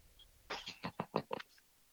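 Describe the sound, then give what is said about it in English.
A quick cluster of sneezes, several short breathy bursts in rapid succession lasting about a second, not very loud, with no talking. “God bless you.”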